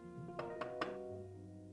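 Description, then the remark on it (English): Three quick, evenly spaced knocks on a condo door, sharp and fairly loud, sounding over a steady low musical hum that continues after them. “She's getting up from her desk when she hears a knock from the door.”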